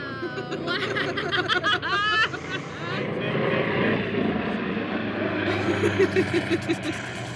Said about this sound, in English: My helicopter! Wow!